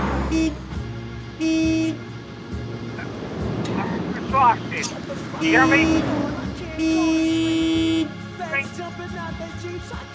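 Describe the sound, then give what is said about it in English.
A car horn honks four times in loud, steady blasts of varying length, with people shouting and talking outdoors between and over the honks. “Oh, we're honking!”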